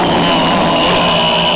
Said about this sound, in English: you sure you want this 1991 Plymouth Acclaim? I mean, honk the horn real quick again.